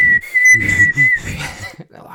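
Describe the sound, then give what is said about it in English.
A person whistles a high, fairly steady tune for about two seconds, clear, while other voices talk over it at the same time. “I got in trouble. Yeah, whistling. Whistling.”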